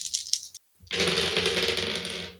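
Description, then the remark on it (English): Dice clatter and rattle: a short burst of tumbling, a brief pause, then a longer, steady rolling rattle that gradually dies away. No one speaks. “Let me roll some dice.”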